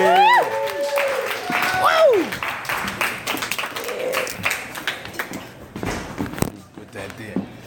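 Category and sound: crowd, audience clapping and applause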